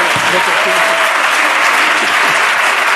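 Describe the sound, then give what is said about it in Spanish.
A studio audience breaks into dense, steady applause, many hands clapping at once in a loud, continuous wash that holds evenly for the full three seconds. “O sea, eso realmente, yo pensé que ibais a aplaudir porque la honestidad es grande.”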